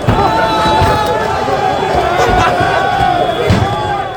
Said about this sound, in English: That is Dutch rioters who've had four nights of rioting, throwing stones and firework at police, looting shops, engaging with water cannon.